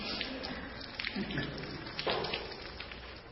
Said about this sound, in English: and you might guys want to pick up your purses there. Number three is to overflow out of us into the lives of others. Yes. It's just water.